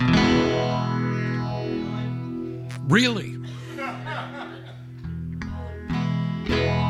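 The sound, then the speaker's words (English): Electric guitar run through a 1970s vintage MXR Phase 90 phase shifter stomp box pedal, its sustained harmonic tones sweeping in slow, repeating arcs. A brief spoken exclamation and a chuckle cut in near the middle. “I'm running my electric guitar here through a 1970s vintage MXR Phase 90 phase shifter stomp box pedal.”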